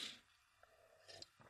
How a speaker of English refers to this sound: Let me have a sip of coffee, relax, calm down a little bit, take a deep breath.